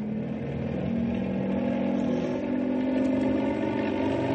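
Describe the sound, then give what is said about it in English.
A helicopter engine revs up for better stability during a dry run, with a loud, steady mechanical drone whose low humming pitch climbs slightly after the first second and then holds, with no voices. “If the copter vibrates a lot, don't think it's falling apart. I'm going to have to rev it up for better stability.”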